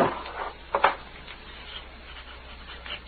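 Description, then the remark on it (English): A wooden desk drawer scrapes open and bumps shut, two quick rubbing knocks near the start, followed by faint rummaging for ink and low room noise. “There'll be some of the other in this drawer.”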